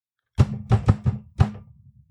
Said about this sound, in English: Kicks in the door.